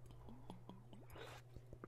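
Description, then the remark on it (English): Someone takes a sip of water, with quiet wet slurping and a few soft swallowing clicks over a steady low background hum. “Let me just have some water right here.”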